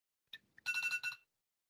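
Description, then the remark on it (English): A phone ringtone goes off: a couple of short chirps followed by a bright, warbling electronic melody lasting about half a second, then silence. “I'm sure everyone was thrilled that my phone just went off there.”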